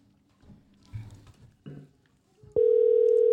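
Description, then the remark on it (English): A few muffled handling bumps, then a loud, steady ringback tone from an outgoing phone call on speaker starts abruptly and holds unbroken to the end. No one speaks. “This is so dramatic. I know, the ringing.”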